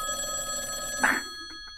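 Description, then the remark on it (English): A telephone rings with a steady, bright electronic tone that carries through the whole moment, swelling briefly louder near the end. No one speaks. “Intern, I told you, wait for the phone to ring before they speak.”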